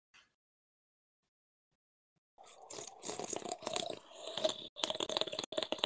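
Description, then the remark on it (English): Loud slurping sips of a drink start after about two seconds of silence, continuing in wet, gurgling bursts with brief pauses between pulls. “Hey, man, I'm talking about saving women and you're just here sipping.”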